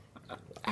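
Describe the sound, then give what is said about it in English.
Wet chewing sounds of people eating Booja Booja: a few quick crunchy bites and mouth noises in an irregular rhythm, ending in a slightly louder crunch, with no talking. “Right, let's wrap it up so people don't just hear us They're chewing.”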